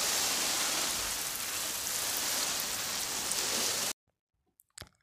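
Steady hiss of shower water spraying for about four seconds, then cutting off abruptly, followed by a couple of brief soft knocks in the quiet.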